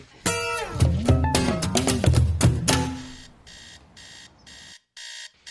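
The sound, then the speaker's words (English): An alarm clock beeps loudly and insistently in regular rhythmic bursts, preceded by a few seconds of warbling, sweeping electronic tones. No one speaks. “Horrible beeping noise. Must be stopped.”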